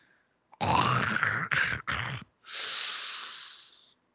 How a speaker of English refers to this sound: They're trading a growl, and then I think Goldust just is, like, breathing heavily into the microphone.